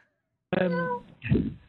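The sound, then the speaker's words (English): A cat, locked in another room, meows after a moment of silence: a drawn-out, tonal cry, then a brief pause and a shorter, rougher second call. No one talks over it. “Oh no, not the cat.”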